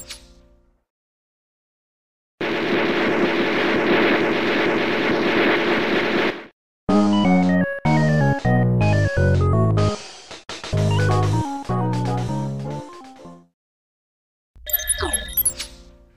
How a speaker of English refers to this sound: The wacky, jazzy tones of King of Chicago Boat. Mm-hmm. This game's got a real an unusual soundtrack for an unusual game, that's for sure, Boat, on this one.